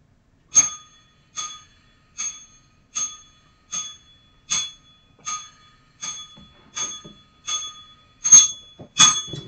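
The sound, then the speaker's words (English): A bell is struck twelve times in a steady, evenly spaced rhythm, each ring bright and metallic with a short decay, the last few strikes a little louder. “We're going to ring the bell.”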